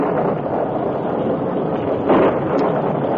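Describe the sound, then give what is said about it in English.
A steady, dense roar of heavy rain from a thunderstorm pours without pause, with a brief swell in intensity partway through; no voices are heard. “A short time after Dan was captured and tied in the barn with Tonto, a thunderstorm accompanied by heavy rains hit the territory.”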